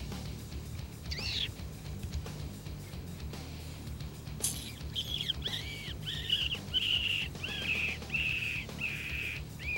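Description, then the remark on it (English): A hunter without a predator call imitates a wounded rabbit's distress cry by mouth to lure a coyote in an open field: a string of high, strained squeals repeating in a steady rhythm, with a few scattered earlier cries, over a low outdoor rumble. “I didn't have a predator call, so I had to do the best I could on my own, and to my surprise, my wounded rabbit call was working, as I was soon to get a shot off.”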